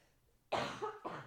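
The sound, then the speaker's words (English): A person coughs twice in quick succession, a harsh, fairly loud burst followed by a shorter second cough, with quiet before them. “Okay, while you're coughing,”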